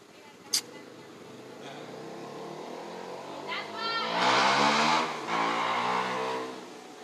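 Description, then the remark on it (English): A car engine rumbles, swelling louder as the vehicle pulls up and then idling steadily, with muffled voices in the background and a brief sharp knock near the start. “It's about time somebody that pulled up and said something.”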